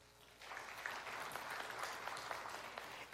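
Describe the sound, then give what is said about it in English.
An audience claps after a speaker asks them to clap if they think they are people pleasers. The clapping is a dense, steady patter of many hands, swelling quickly after a quiet start and holding at an even level without any voices. “Will you clap if you think you are a people pleaser?”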